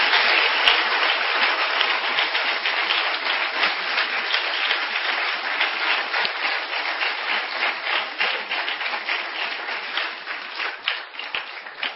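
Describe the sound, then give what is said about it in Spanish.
Sustained audience applause given to the Lord fills the whole stretch, a dense, steady wash of many hands clapping at an even loudness, with no voices standing out. “¿Cuánto le dan aplausos al Señor?”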